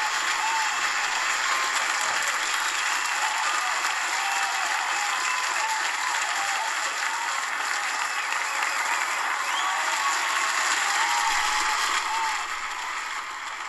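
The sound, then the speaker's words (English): A large crowd applauds continuously, dense clapping filling the space at a steady, loud level for the whole stretch before easing slightly at the end. “Wow, that's a pretty big applause.”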